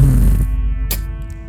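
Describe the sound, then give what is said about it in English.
A loud, bass-boosted fart sound effect: a heavy, distorted low rumble with a buzzing drone, a sharp crackly burst near the middle, then a slightly quieter tail. No one speaks. “Who farted? Why was it the bass boost sound effect?”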